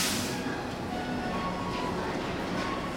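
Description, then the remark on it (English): A train rumbles steadily, a continuous low roar with a brief hiss at the start, as it pulls into a station platform, with faint background murmur underneath. “We all get off the train together, and when the crowd thins, the boy and his dad are still with us on the platform.”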